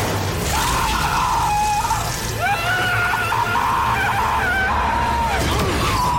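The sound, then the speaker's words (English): A man, the film character Hector, lets out long, strained screams that waver and bend in pitch, loud, continuing almost without pause over a dense, noisy background for several seconds. “Here's some more Hector screaming.”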